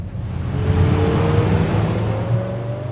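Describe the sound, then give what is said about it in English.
A small motorboat's engine drones steadily, a low, rumbling hum with a faint rising whine as it speeds along the Willamette River, with no voices. “A couple miles away, a small boat speeds along the Willamette River.”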